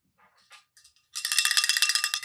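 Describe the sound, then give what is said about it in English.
A few light, scattered metallic taps give way to a loud, bright bell shaken rapidly, ringing in a fast, continuous jangle for just over a second with no voices. “There's a little ring, a ring-a-ding-ding.”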